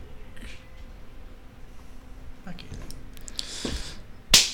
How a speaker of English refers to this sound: Good job, bro. High five. Good job, bro.